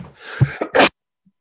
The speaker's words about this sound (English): Got him. Yeah. I made him sneeze so hard that it's all over his hand.